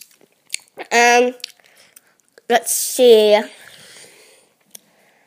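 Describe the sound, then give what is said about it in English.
People chewing gum with wet, sticky smacks and soft clicks, interrupted by two short voiced sounds from the mouth, then a few scattered faint smacks in near silence. “If you might hear this weird chewing, we are chewing gum right now.”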